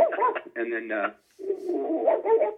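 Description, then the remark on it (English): A voice actor imitates Toto the dog with whiny, yelping vocal sounds, delivered in two fairly loud bursts separated by a brief pause. “I play Toto, the dog.”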